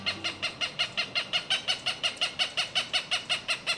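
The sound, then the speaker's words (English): A Cooper's hawk gives a rapid, steady series of harsh cak-cak-cak notes, about seventeen evenly spaced calls, clear, with no talking. “Resident Cooper's hawks that nest in the urban areas of Albuquerque, New Mexico, are thriving.”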